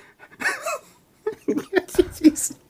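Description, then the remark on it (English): A man voices a cat imitation as part of a challenge to make animal noises in order: a drawn-out, whiny vocal call followed by a string of short, choppy vocal bursts, fairly loud. “can … make animal noises in order from top to bottom? Dog. There you go. Cat.”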